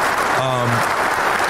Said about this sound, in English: Yeah, give them a round of applause, please. Give it to them. Shout out to them brothers.